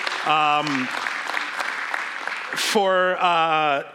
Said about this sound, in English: First of all, happy Mother's Day to all of the moms in this room. Let's give them a round of applause for everything that they do.